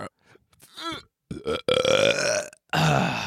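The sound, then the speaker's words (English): A loud, drawn-out belch, preceded by a few short croaky gulps and followed by another rough burst right after a brief pause. “Just take a big ass belch. Big old belch.”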